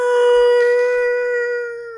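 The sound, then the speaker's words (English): A human voice imitates a whale call with one long, steady, wailing tone that holds its pitch for about two seconds, loud, fading slightly at the end. “That's a whale. Is a whale noises?”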